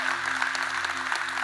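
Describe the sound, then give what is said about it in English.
A church audience claps for everyone who has just said a prayer of salvation, a dense, steady wash of overlapping hand claps, sustained at even volume throughout, with a low electrical hum running underneath. “Come on, really clap, church, for everybody that said that.”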